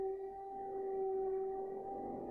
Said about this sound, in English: Surely that's not going to be like 1,000 holes to be drilled. Sounds like he's drilling holes in the wall.